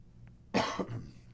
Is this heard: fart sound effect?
no